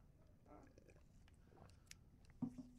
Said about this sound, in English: So if you'd like me to try and reenact it, my fifth grade opera voice is pretty good, but it basically went like, hold on, we need a sip of water for this.